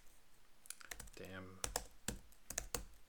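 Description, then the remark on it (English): Several sharp, uneven keystrokes clatter on a wireless computer keyboard, with a brief tonal hum in the middle as a voice murmurs between taps. “Wireless keyboard turning off automatically.”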